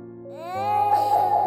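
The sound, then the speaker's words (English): A soft, echoey child's cry rises into a drawn-out wail, heard alone over a low, steady droning tone that hums underneath throughout. “you hear a very soft, echoey sound of a child crying.”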